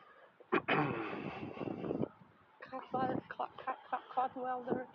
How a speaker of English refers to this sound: Or is that a chicken? No, those are ducks. Those are ducks.